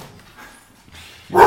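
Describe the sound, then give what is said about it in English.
A dog lets out a single loud bark right at the end, following a stretch of faint low background noise. “Boris disagrees with liberalism entirely. He's a good little communist dog.”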